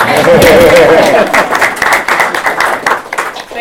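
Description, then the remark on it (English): A room full of people claps steadily, a dense wash of overlapping hand claps that peaks early and tapers off over a few seconds, with faint voices mixed in. The applause is for an evening event's speaker who just finished a PhD at the London School of Economics. “So I think we should give her a warm round of applause, both for finishing.”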